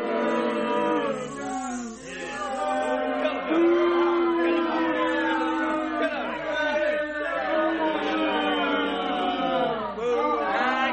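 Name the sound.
crowd cheering and whooping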